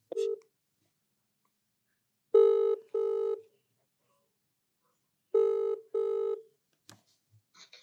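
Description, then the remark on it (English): Outgoing phone call ringing tone, calling a number left on the door of a locked Chinese library in Ballarat: a brief beep, then two double-ring bursts of a steady buzzing tone spaced a few seconds apart, heard down the line, followed by faint clicks as it's answered. “There's only a phone number on a piece of paper on the door. So I've rang the number.”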